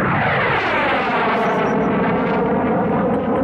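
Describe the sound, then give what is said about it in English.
A loud, continuous roar of jet aircraft passing overhead, with broad rushing noise and slowly sliding whining tones as the planes fly by. No voices are heard. “Yes, and this is noise from jets. So we've got this kind of noise coming over the lizards.”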